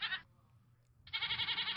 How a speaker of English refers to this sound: What the hell? That is a Nubian goat. Nubian goat.